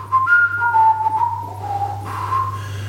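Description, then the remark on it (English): A person whistles a short, wavering melody, the pure tone sliding between a few notes over a low steady hum, with no talking. “I think Bet365 musically could have just whistled.”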